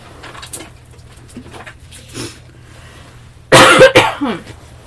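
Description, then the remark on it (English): Someone clears their throat: a loud, rough rasp followed by a shorter second burst, breaking a stretch of near-silence with a faint low hum underneath. “I'm hoping I don't have to cut out me clearing my throat 35 times.”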